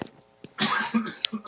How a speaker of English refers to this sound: I coughed earlier, too. I don't know how much it got in there